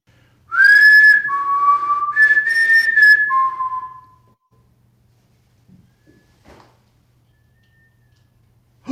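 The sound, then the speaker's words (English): A loud whistled phrase of several sliding notes lasts about three seconds, then gives way to near silence broken by a few faint knocks. “You don't have to turn it up too loud because you can definitely hear the whistles.”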